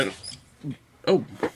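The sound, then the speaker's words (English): A dog yelps in a few short, high, squealing bursts after an office chair being backed up rolls over it; fairly loud, with brief pauses between cries and no talking over them. “I ran over my dog. I was trying to back up my chair.”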